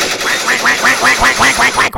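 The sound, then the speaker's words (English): Ducks quack in a rapid, steady series of about seven calls, fairly loud, with a couple of brief sharp gunshot bursts cutting in near the end as the ducks are being shot. “And this is a bunch of ducks just being shot.”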